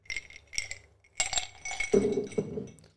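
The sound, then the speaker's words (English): Several glasses clink together in quick succession as a group of men make a toast, bright ringing taps followed by a softer rattle and the clatter of glassware settling. “Cheers, gentlemen. Cheers to 100, boys.”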